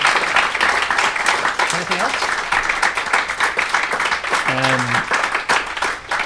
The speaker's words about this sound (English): Thanks very much for coming along. Thanks very much for listening. Thank you. Thanks for applauding.